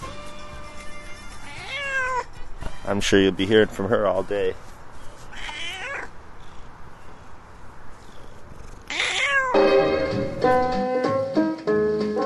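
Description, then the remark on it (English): A hoarse neighbor's cat meows several times, raspy and croaky, with purring underneath and a person talking in between the cries. “My croaky neighbor cat that comes and hangs out with me.”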